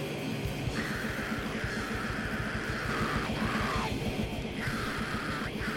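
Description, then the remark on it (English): A harsh National Socialist Black Metal song: raw, shrieking screamed vocals over a dense, distorted wall of guitars and fast pounding drums, loud and relentless throughout. “This is like far right backyard screaming, I love Nazis. Yeah, music.”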